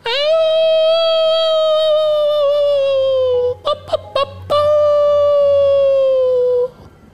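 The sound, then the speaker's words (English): Wolves outside a home howl in long, slowly falling wails, broken midway by a few short yelping cries before another sustained howl rises. The sound is loud, with no talking. “And suddenly she hears wolves outside.”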